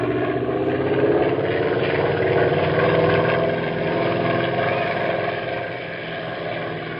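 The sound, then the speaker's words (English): An airplane engine runs steadily, a loud continuous droning hum with a throbbing edge that eases slightly toward the end. No one speaks. “Meantime, what do you say about taking the plane back home?”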